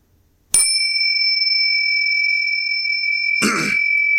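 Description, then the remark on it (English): A single bright bell strike rings out clearly and hangs with a steady, sustained tone for several seconds, while someone clears their throat near the end. “The bell or your intro?”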